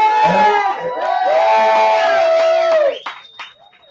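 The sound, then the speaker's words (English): A large crowd of about 18,000 people in Orange, California roars and cheers loudly for about three seconds, a dense wash of many voices with a few higher shouts rising above, before the noise drops off abruptly into scattered fading calls. “You guys cannot see him, but we got quite the crowd here.”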